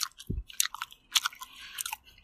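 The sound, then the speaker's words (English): Biting and chewing of a soft, artificial peach-flavored fruit candy: a low thump of the bite, then wet, sticky mouth clicks and smacks in an irregular rhythm, with no talking. “I feel like we promised more mouth sounds on this one.”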